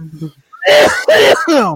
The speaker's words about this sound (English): Thanks for coughing in our ears, dick.